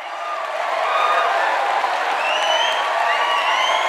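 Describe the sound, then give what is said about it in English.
A large room of people at an Apple event claps and cheers steadily as Steve walks on stage, with whistles rising above the dense, continuous applause for several seconds. “Immediately, the entire room began clapping and whistling away.”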